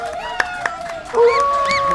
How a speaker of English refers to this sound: See, we don't have an applause department. We have to clap for ourselves.